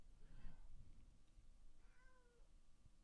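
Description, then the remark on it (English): A cat behind a curtain meows twice, a short muffled call followed by a clearer, drawn-out mew, both fairly soft against a low background rumble with no one talking. “Pay no attention to the cat behind the curtain.”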